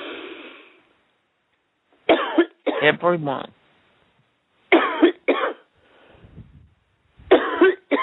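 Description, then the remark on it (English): People cough in a series of harsh, rasping bursts, often in quick pairs, separated by short pauses, with a brief spoken word among them and some faint low rumbling in between, during a deliverance prayer in which they are told to take a deep cough and cough out spirits. “Take a deep cough and cough them out.”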